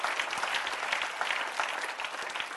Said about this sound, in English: Somebody clap your hands and get excited about that. Can you do it?